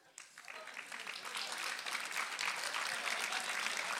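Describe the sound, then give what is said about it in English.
A crowd breaks into applause and cheering that swells over the first couple of seconds, then holds at a dense, steady roar of clapping mixed with voices. “If you don't cheer louder, I'm going to die and get killed. So cheer louder, please, in the name of Jesus.”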